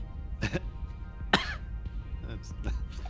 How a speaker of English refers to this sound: sort of coughs into her hand.